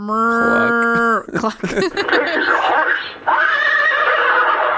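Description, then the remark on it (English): A loud, steady, tonal horse neigh lasting about a second, followed by rougher, breathy snorting and whinnying noises that continue until the end. “Horses say horse, nay. Horses nay.”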